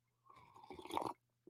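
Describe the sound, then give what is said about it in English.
A single slurp of hot coffee, a wet sucking sip lasting about a second that grows louder before cutting off into quiet, with no talking. “I don't normally slurp like that, but I felt like I had to give you something, because you want coffee noises.”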